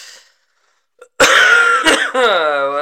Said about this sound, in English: Hello. And God damn it. I had to cough as soon as I was done with that. Jesus.